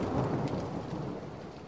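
Heavy rain pours down in a steady, dense hiss, with a low rumble of thunder rolling underneath. No voices, just the continuous wash of the storm.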